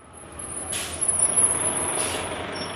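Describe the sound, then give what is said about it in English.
A large city bus, the 42 bus in Washington, D.C., idles with a steady engine rumble, its air brakes letting out two sharp hisses about a second apart as it comes to a stop in front of a 7-Eleven and people get off. “A few buildings down from Bow Tie, people get off the 42 bus in front of a 7-Eleven.”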